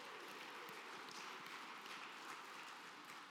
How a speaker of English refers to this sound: So yeah, thank you so much for your generosity. Very much worthy of that round of applause. Thank you for making that possible.